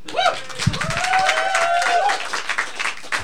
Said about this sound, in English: Okay, can we keep the applause going? Massive, massive applause.